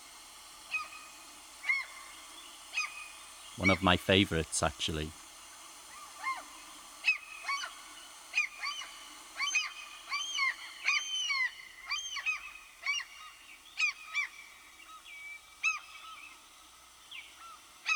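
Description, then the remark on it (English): Seagulls call repeatedly with short, squawking cries scattered across the whole stretch over a soft, steady wash of water, while a person speaks briefly near the start. “And here's our next bird, accompanied with some water sounds, as usual. It's the seagull.”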